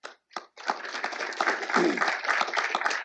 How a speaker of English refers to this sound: So for all of you in this in-person audience, those of you online, those of you who have been Heritage interns, alumni, a round of applause to you for being part of this great institution.